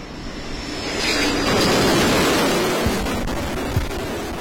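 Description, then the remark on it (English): Fighter aircraft take off from the aircraft carrier USS Dwight D. Eisenhower in the Red Sea: a broad, rushing jet roar swells to a peak and then holds steady, loud and continuous, with steady wind-like hiss across the whole stretch and no voices. “Now, these are just some of the fighter aircraft that are taking off on a regular basis from this aircraft carrier every single day to conduct.”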